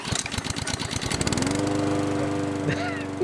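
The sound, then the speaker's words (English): A small pull-start engine sputters through a quick run of choppy pulses, then catches and settles into a loud, steady, buzzing idle like a lawn mower. “And with that, let me pull the crank on this puppy, get her started, and away we go.”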